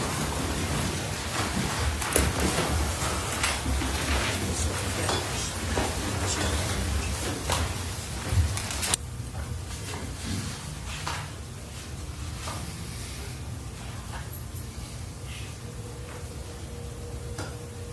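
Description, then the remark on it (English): A jury files out of a courtroom for a 10-minute recess: shuffling movement, scattered clicks and light knocks like chairs and a door, busy at first, then thinning to a quieter murmur of room noise. No one speaks. “Jury exiting.”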